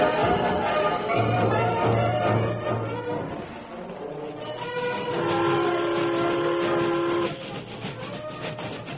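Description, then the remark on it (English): The local freight train from Buffalo Junction rumbles steadily along the rails toward Sycamore Bend, loud, with a continuous clattering roar; partway through, a sustained whistle sounds for a couple of seconds over the noise. “The local freight train from Buffalo Junction had traveled half the distance to Sycamore Bend, and yet Curly Tatum and Gus Dexter were still sandwiched in between the last two cars.”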